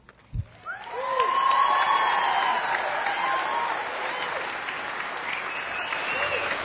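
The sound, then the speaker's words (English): Sustained standing ovation from a large audience, standing and waving fans, for the co-chair of AFM after her introduction of U.S. House Representative Mary Peltola, who approaches the podium; a dense wash of clapping swells quickly after a few isolated sounds and holds steady, with scattered cheers and whoops. “The crowd has given Anna Cook, co-chair of AFM, a standing ovation for her heartfelt introduction of U.S.”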